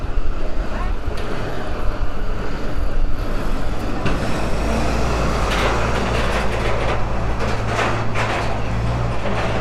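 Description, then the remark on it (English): Steady street traffic on Henley Street rumbles past, a continuous low engine drone with brief swells as vehicles go by, with deliveries and people getting to work, and faint voices mixed into the busy outdoor background. “At certain times of the day, Henley Street is actually closed to traffic. Obviously not right now, because you've got people having deliveries, people getting to work, that kind of thing.”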